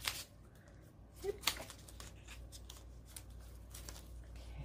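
Soft rustling of paper pages being flipped in a Victorian-style junk journal, with several crisp swishes and crinkles spaced irregularly over a faint low hum, no voices.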